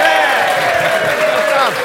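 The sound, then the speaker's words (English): A round of applause, steady and loud throughout, with sustained whooping and cheering voices riding over the dense clapping for about two seconds. “Can we, before we do anything else, can we just say, can we have a round of applause for Marouane Fellaini for headbutting Ryan Shawcross?”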